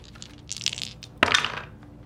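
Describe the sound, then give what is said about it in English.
Sneak attack dice rattle briefly, then clatter sharply onto a hard table with a bright clicking hit that tumbles and fades within a second. Fairly loud, with no one talking. “I was going to say, but you also get your sneak attack dice.”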